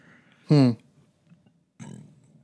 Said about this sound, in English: I just burped the microphone.